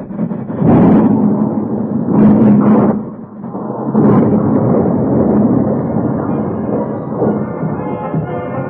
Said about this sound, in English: He saw the headlight of the train. He knew there was no chance to stop it before it reached that bridge. He saw it thunder close, saw the bridge in bold relief in the train's lights, and then...